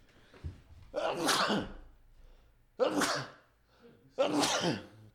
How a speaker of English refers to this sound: I'm going to sneeze. I'm sorry.